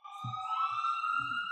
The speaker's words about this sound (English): Oh, sorry, I got another. It's okay. Siren, go ahead.